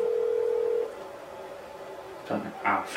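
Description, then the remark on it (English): A phone's ringing tone sounds once as a steady electronic hum lasting under a second, then cuts to a quiet line. Soft, brief bursts of noise follow near the end. “It's a long ring. Maybe he's blocking the phone.”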